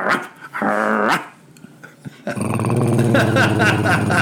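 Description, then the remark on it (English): A short, throaty growl, then a brief pause, then a louder, sustained snarling growl that rumbles on to the end, aggressive-sounding, with no talking. “Something more vicious?”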